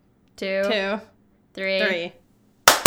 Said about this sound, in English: I've noticed that when I line that up, inevitably later in the episode, we're off. This doesn't matter. Who cares? Yes, 1, 2, 3, clap.